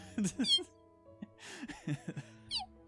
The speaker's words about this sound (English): As soon as you say that about snakes, Gino's going to let out his little kitty mew.